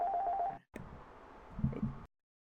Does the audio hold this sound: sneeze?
no